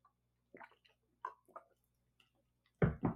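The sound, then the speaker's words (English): Quiet, wet little slurps and mouth clicks from someone sipping water, scattered over a few seconds, ending in a louder gulp or clunk. “One second, I need a sip of water.”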